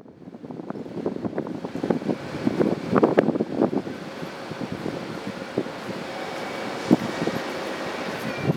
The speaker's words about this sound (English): In Prague, I spent hours at the train station. I watch the trains come and go